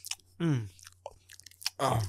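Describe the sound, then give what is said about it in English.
Someone vocally imitates mukbang-style eating: wet mouth smacks and crunchy clicks mixed with two drawn-out, falling 'mmm'-like voiced moans, loud against a steady low hum. “We should do an ASMR. Like a mukbang podcast.”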